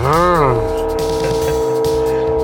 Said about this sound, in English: Oh, yeah, it's a little train.